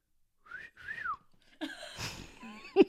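A person whistles two quick, clear notes, a short rising tone then a longer swooping one, fairly loud, followed by louder voices and laughter.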